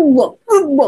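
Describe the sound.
A voice mimics a cat hacking up a hairball in the middle of the night, with two strained, throaty heaves in quick succession, each sliding down in pitch, loud, with a brief gap between.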